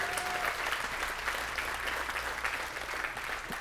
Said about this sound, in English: Let's give another round of applause to the Lord. Come on.